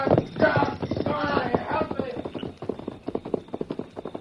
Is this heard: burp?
no